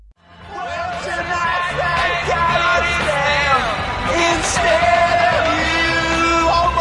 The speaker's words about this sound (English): That is a great song. A modern Christmas classic.